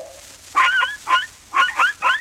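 A little dog gives four sharp, high-pitched yipping barks in quick succession, loud, with short gaps between them and no one talking.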